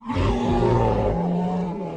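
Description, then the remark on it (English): A giant T-Rex, rising out of swamp water where it had been submerged, roars: one loud, deep, rumbling bellow lasting about two seconds, gritty and growling, dropping lower in pitch partway through before trailing off. No voices accompany it. “It's a giant T-Rex that was submerged in the water to clean away parasites.”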